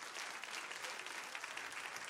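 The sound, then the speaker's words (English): Steady audience applause, a dense wash of many hands clapping at an even, sustained level throughout the short stretch, with no voices standing out; a round of applause given to God. “So give God a round of applause for that.”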